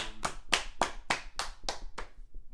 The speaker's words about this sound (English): We first of all, we gotta clap it up for fucking Christian Bale.